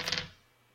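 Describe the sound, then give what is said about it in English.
Dice clatter briefly on a hard surface, a quick burst of three or so sharp clicks, then the sound dies away into near silence. “Gonna get out my handy dandy dice of awesomeness.”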